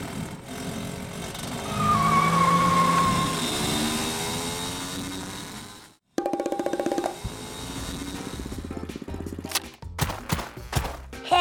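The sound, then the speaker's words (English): A car engine revs loudly and drives off with a brief squeal of tires, then gives way to clattering, rattling mechanical noises and bumps. “To the canoe car. Seatbelt, Kapow. Check. Let's roll.”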